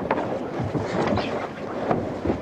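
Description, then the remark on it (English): A heeled-over sailboat beating into a westerly wind slaps and chops through choppy waves while gusting wind buffets the microphone, producing a steady rush of water and wind with irregular splashing thumps. “We're chopping around the place here.”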